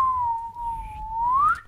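A person whistles one sustained, clear note that sags slightly, then glides upward at the end. It is fairly loud, with a low background rumble and no talking.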